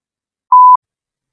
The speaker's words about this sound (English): While you podcast listeners hear the beep and get your little break, let's spin up a poll.